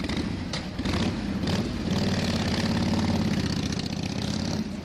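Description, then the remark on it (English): A toy motorcycle's engine sound effect revs steadily for about five seconds, a buzzy, loud mechanical drone with slight surges in pitch, no voices present. “That's the sound that I use to start the podcast with. We got it off that one? Thing. Yeah, that motorcycle.”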